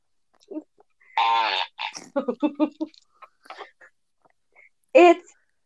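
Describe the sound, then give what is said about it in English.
Novelty fart noises from a toy fart jar: a long buzzy blast, then a quick sputtering string of short toots, a few faint squeaks, and one last brassy burst, all fairly loud. “It's the finest quality farts in a jar.”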